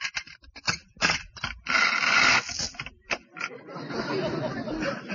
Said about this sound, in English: I'll unlock the door.